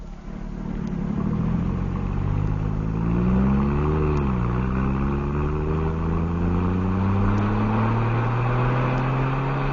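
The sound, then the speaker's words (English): A sergeant's car engine revs up loudly, dips briefly as it shifts, then climbs steadily in pitch as the car pulls away from a wharf and accelerates, with no voices. “We pushed Bolton through a window away from the wharf and into the sergeant's car.”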